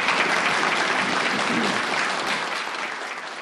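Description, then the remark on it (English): A crowd at an Alcoholics Anonymous meeting gives a speaker another round of applause, clapping steadily for a few seconds, a dense, even patter of many hands that stays loud throughout and eases off slightly toward the end. “Okay, could we all give another round of applause”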